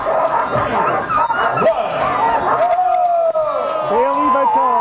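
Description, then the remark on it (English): A dense chorus of many sled dogs barking, yipping and whining together, continuous and excited, like a large pack, with a murmur of crowd voices mixed underneath, at the ceremonial start of the Iditarod sled dog race. “Sound for the ceremonial start this week, sled dog expert”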